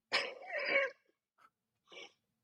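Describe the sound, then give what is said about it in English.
A harsh, forceful cough lasting nearly a second, followed by two short, quieter coughs or throat-clearing sounds after a brief pause. Fairly loud, with no talking. “That happens when you're coughing and you're covering up.”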